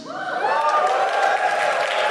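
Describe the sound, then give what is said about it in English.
A live audience cheers loudly in response to a call to cheer if they are now or have ever been immigrants, with sustained whoops and shouts over a steady wash of applause, continuing for a couple of seconds without letting up. “Hello, just give us a cheer if you are now or have ever been an immigrant.”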